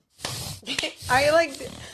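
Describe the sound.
A person makes a short series of strained, nasal animal-like vocal noises imitating a dog, with rising whiny tones and breathy grunts over about two seconds.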